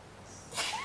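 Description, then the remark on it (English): A single short sneeze from someone in the audience, soft, with a brief noisy hiss and a faint trailing tone, and no talking around it. “Bless you.”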